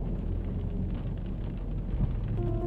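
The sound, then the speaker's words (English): Steady rain falls continuously, a dense, even wash of noise with a deep rumbling undertone and no voices, holding at the same level for the whole stretch. “I like the sound of the rain.”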